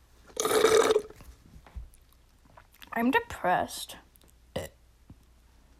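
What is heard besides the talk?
burp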